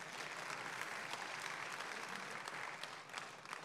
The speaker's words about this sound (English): I'm very proud of my daughter who graduated from Boone High School this year. Yeah, you can applaud that.